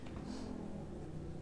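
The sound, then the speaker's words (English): A motorbike speeding down the street outside revs steadily, a continuous droning whine with a slight rise in pitch, heard on its own without any talking. “Why are so many people speeding down the street? We just have, like, 3 motorbikes, 2 helicopters.”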